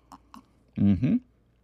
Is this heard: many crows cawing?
no